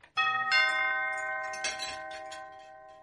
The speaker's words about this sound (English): Suddenly, there was a ring at the door.